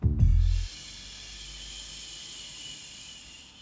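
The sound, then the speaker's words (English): A forceful exhale after a final breath hold in a guided breathing exercise opens with a brief low, rumbling gust of air, then trails into a steady, breathy hiss that holds for about three seconds, with no talking. “Release any stress, pent-up feelings, anger, anxiety with this exhale.”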